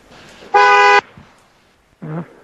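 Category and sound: vehicle, car horn honking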